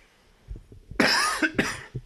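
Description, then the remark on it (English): Two sharp, harsh, loud coughs in close succession, following a few soft low thumps, with no talking. “Okay, every time I turn on the microphone, it's like an automatic thing. I want to cough.”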